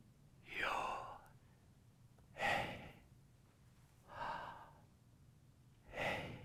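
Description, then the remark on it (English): Slow, deliberate breaths in and out, four audible airy rushes spaced about two seconds apart with quiet pauses between, fairly soft, with no talking. “Ancient sages believed that Yod, He, Vav, He was the sound of breathing.”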